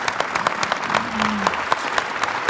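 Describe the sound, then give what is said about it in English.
An audience applauds steadily, a dense patter of many hands clapping, with a brief low hum rising under the clapping midway through. “Let's give an applause to this guy right here.”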